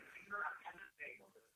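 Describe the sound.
A faint, muffled mix of television voices comes through a narrow, tinny phone line, with speech-like bursts and background chatter drifting in and out.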